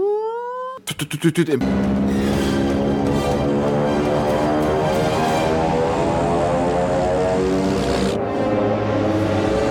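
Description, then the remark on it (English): In an action film scene with music, an engine revs up with a quick rising whine, then settles into a loud, sustained droning roar that gets closer, with a rich layered hum throughout. “And that music cues up and the revving of the engine, it gets closer to that.”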